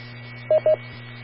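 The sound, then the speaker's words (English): Two brief touch-tone DTMF dialing beeps in quick succession, keyed on an amateur radio's keypad to access an autopatch, each a steady dual-pitched tone, sounding loudly over a constant low hum and hiss of radio noise. No one speaks. “I just realized I don't know where the pound key is on my radio.”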